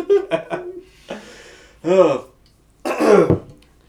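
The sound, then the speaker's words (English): Several harsh, loud coughs and throat-clearing bursts, close to the microphone, in uneven clusters with short pauses between them, the last two especially forceful. “I should have coughed that loud right into the mic.”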